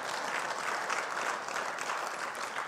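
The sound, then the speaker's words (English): Steady audience applause fills the space, a dense wash of many hands clapping at an even level throughout, fairly loud and continuous with no voices standing out. “Yeah, give that a clap.”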